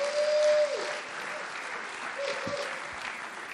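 A round of applause from an audience, steady dense clapping filling the whole stretch, slightly louder at the start and then holding an even level, with a couple of brief tonal whistles or squeals mixed in.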